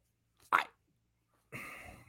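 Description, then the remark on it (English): A sneeze: a short, sharp vocal burst, a brief pause, then a loud breathy rush of air that trails off. No one speaks. “bless you.”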